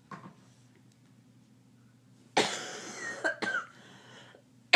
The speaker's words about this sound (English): To the listeners, I think I have pneumonia, so I'm really sorry. Wait, you actually do think that? I'm not sure. Are you coughing up white stuff? I'm coughing up something.